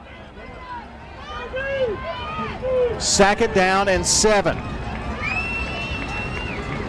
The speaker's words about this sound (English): The crowd gasping at every play here.